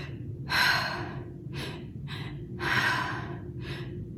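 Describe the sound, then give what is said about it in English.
A breathing technique demonstrated: a deep inhale through the mouth in two stages, into the belly then topped off to the chest, followed by a relaxed exhale, repeated twice in a steady rhythm with no talking. “So this one goes like you breathe into your belly with your mouth, and then you top it off to your chest, and then you exhale.”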